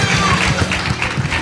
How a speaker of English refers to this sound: Clap your hands to the Lord again. Lift your voice.